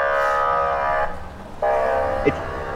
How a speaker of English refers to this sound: I feel like I'm in an episode of Cops Moscow here. Seriously. It's like the ambulance is on its way somewhere in a hurry and also has indigestion.